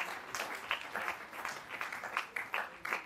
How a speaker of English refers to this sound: In the name of Jesus, clap your hands to the Lord. Dale un aplauso al Señor.